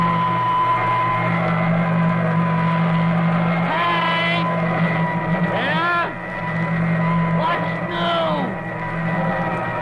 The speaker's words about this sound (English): Oh, I'm just finishing vacuum the rug.